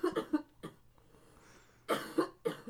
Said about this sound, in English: Now she's coughing and crying.